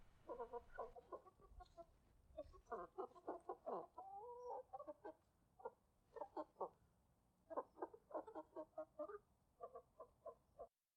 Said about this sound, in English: I'll play some chickens in the meanwhile.